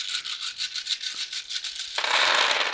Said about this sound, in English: So I need to actually add an extra dice after I roll these. I'm rolling all my dice in hand.